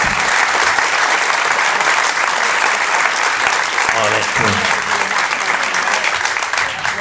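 A crowd applauds steadily as guests come back in to find seats, dense loud clapping filling the whole stretch with a continuous crackling texture and no pauses, faint murmuring voices mixed underneath.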